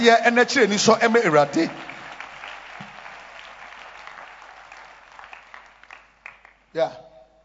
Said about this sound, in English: I appreciate the Lord with a wonderful clap of hands.